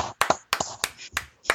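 clapping

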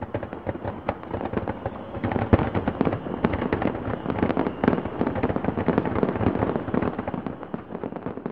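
fireworks exploding

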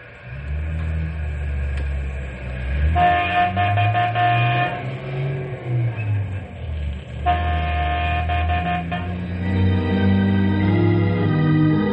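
train on railway tracks

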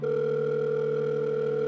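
telephone ringing sound effect

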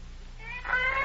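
cats yowling

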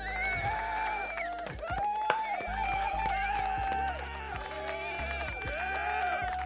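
round of applause

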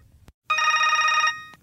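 telephone ringing

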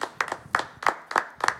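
audience clapping

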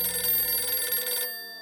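telephone ringing

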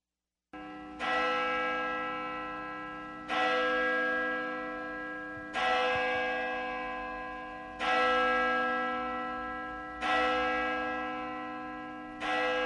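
church bells ringing

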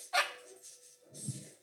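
dog barking

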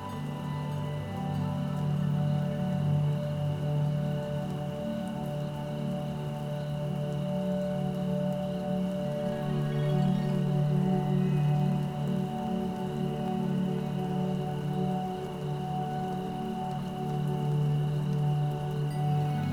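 rain falling

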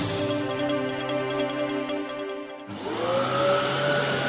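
vacuum cleaner running

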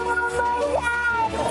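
cat meowing

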